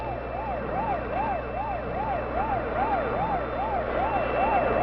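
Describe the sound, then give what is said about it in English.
Wailing emergency sirens of rescue trucks from a civil defense training center starting down Mount Lee in the Hollywood Hills rise and fall in a steady, rapid rhythm, about two cycles per second, over a low rumbling vehicle engine, loud, with no talking. “On Mount Lee, high in the Hollywood Hills, rescue trucks from the Civil Defense Training Center are starting down the mountain.”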